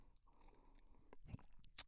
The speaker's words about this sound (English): Let's collectively take a nice big sip of whatever your drink of choice is. Mine is Irish cream coffee today.